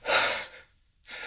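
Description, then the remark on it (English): A loud sneeze: a breathy, hissing burst lasting about half a second, then a brief silence before another airy exhale begins. No one speaks. “Oh, God, sneezing isn't normal. I never sneeze.”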